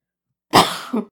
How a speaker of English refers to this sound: You just turned and coughed directly on my face. I'm sorry, I tried to cough past the couch. I'll cough left. Thank you. It felt wet on my face.